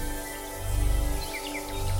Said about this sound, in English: You hear the sound of very distinct bird song. Very similar to the day that you walked into the chapel.